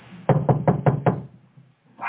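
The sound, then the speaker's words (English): Five firm, evenly spaced knocks on a door by the plumber ring out in quick succession, followed by a brief quiet stretch with no one talking. “Is that the plumber?”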